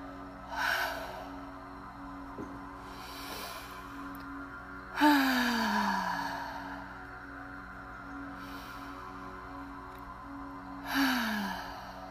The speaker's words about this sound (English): Breathing in, breathe your energy to your throat chakra, and then do a hard exhale.